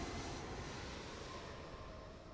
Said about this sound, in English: The plane begins taking off.